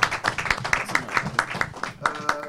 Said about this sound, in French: Donc, d'abord, je voudrais qu'on applaudisse sa production, parce que ça aussi, c'est un peu en belle travail.